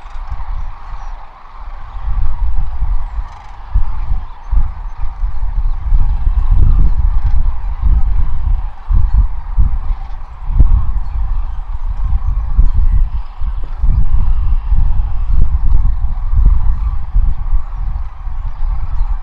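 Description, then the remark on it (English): A huge flock of cranes calling all at once in Kearney, Nebraska, a dense, continuous wall of overlapping honking cries that stays loud and steady throughout, with no voices. “I did some audio recording for you guys to try to just to give you an idea of feel for this waterfall of sound that these birds make.”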